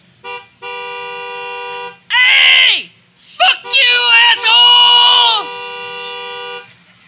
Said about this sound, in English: Ed looks out through the passenger window and blares his horn.